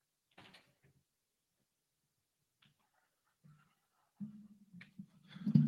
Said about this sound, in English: He opens a door. We don't hear any speaking.